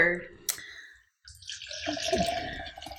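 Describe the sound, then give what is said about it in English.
After a sharp click and a brief moment of silence, water starts running or pouring as someone gets water to drink, a steady splashing hiss that continues to the end, with faint voices in the background. “Let me get us some water while we're up.”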